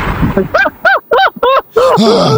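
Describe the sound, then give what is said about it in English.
A man mimics wheezing, heavy breathing with four quick, rhythmic, strained voiced gasps, then a longer drawn-out one, fairly loud with no other talk. “You're heavy breathing.”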